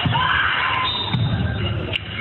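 A busy indoor gym in Cherokee County, North Carolina, full of crowd chatter and echoing shouts during a volleyball rally: a referee's whistle, then serve, dig and set, with a few sharp ball hits and thuds cutting through the steady, loud background din.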